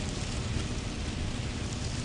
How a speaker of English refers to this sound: Do you think it's raining in Wellington? No. Just because it's raining in Taupo doesn't mean it's raining in Wellington.